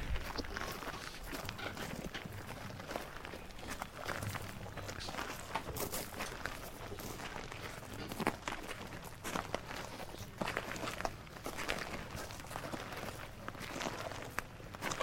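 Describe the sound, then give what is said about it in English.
Many feet crunch steadily over gravel in a continuous shuffling rhythm, the final part of a ceremonial procession led by police sergeants walking past, with no voices, the crowd otherwise exceptionally quiet. “That's why the only sound you can hear, so Sir John salutes again, the only sound you can hear is that of the footsteps on the gravel.”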